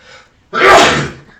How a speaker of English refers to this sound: I'm sorry for your ears. Apologize, yes. He sneezes loud.